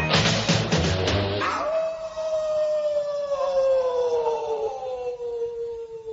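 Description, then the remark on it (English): A brief burst of loud, busy sound gives way to a long, drawn-out wolf howl that slowly slides downward in pitch and holds steady, fairly loud, until the end. “Teen Wolf gonna howl today.”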